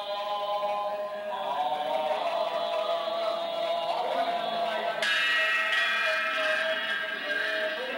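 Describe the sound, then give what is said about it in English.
A matched pair of cymbals, held in the center and struck together on the edges, rings with a bright, sustained metallic shimmer, then is clashed together again partway through, the fresh crash louder and brighter before slowly decaying. No voices. “So the symbols are bells. They're a pair of bells that are matched and played by Concussion.”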